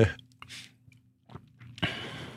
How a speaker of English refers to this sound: Let me take a sip here.